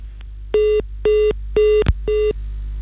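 Four steady telephone keypad tones beep in an even rhythm, each lasting about a quarter second with short gaps, clear over a low background hum; a brief click sounds between the third and fourth.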